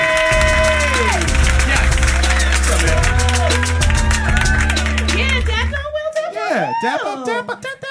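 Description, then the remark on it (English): Steady crowd applause with scattered cheers rolls over loud, bass-heavy music for about six seconds as the first guest is brought out, then the music cuts and excited voices start talking. “Please give it up for ….”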